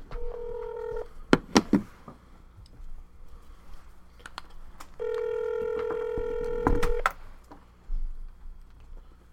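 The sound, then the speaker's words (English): Telephone tones as a call is placed: a steady electronic beep, a few sharp clicks, then a longer sustained tone. Moderately loud, with no talking. “We're going to do the phone call while we're already talking, and hopefully with the slight delay that we had, that he's still there.”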